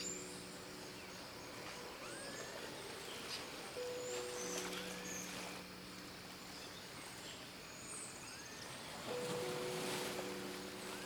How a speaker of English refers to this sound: As you climb up a small wooden staircase to the hut, you can hear the ocean close by somewhere below.